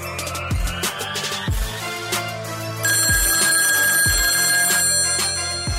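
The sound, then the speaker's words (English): A telephone rings for an incoming call, a loud, steady bright ringing over a rhythmic beat of deep thumps about once a second, with no one talking. “I have not heard from you, so I said, you know what, I'm just going to call him.”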